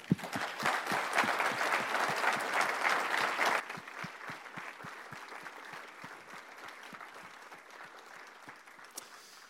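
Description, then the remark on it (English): An audience applauds to thank the speakers, a dense burst of many hands clapping that drops in intensity after a few seconds and continues as thinner, steady clapping until the end. “Would you join me in thanking everybody”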